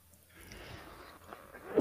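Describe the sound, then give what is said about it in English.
After a stretch of quiet, faint background noise, a single sudden, loud sneeze bursts out right at the end. “Excuse me. God bless you.”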